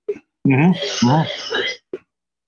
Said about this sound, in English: Uh-oh, who's coughing the lung up? We just got the COVID 420 over here.